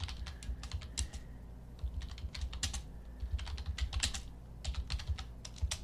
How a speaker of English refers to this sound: I'm going to type into a search engine, what does a MOAB cost?